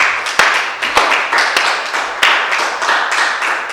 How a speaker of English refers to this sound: Shall we give another clap of appreciation?